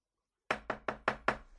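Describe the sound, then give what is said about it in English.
Five sharp knocks on a door in a quick, even rhythm, each with a short resonant decay, clear with no voices. “I would like to knock on the door. Okay, you knock on the door.”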